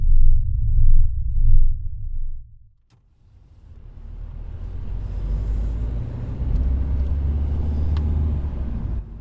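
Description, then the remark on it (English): A car engine rumbles low, drops briefly to near silence, then returns as a steady drone of road and traffic noise with faint higher clatter, as the car drives through city traffic to warehouses about 15 to 20 minutes away. “With today's traffic, we should be there in 15 to 20 minutes.”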